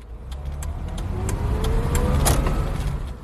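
A car engine rumbles, its pitch rising and falling as the vehicle pulls into a petrol station in Kampala, Uganda, on a busy Friday afternoon, with a few sharp clicks and knocks over the steady low drone. No one speaks.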